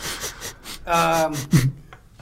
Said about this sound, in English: I'm going to use my super sense to smell good and evil. Sure. Are you sniffing? I'll sniff.